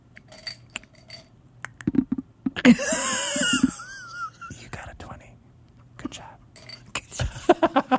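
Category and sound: household object, dice being rolled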